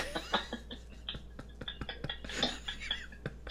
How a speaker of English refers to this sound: Our bath bomb has just started to fizz. That's it.